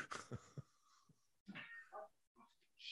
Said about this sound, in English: I got a cat yelling at Steve